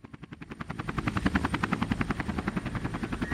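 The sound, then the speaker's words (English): A helicopter's rotor blades whir with a steady, rapid thumping pulse that builds slightly in loudness, continuous with no voices. “From nowhere, helicopters flash their blades and sweep the dragonfly high into the air.”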